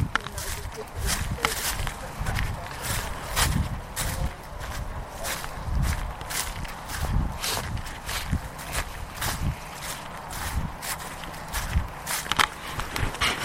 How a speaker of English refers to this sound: You can hear this noise of me stomping around and changing things over.